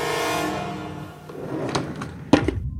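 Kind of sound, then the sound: household object, drawer being opened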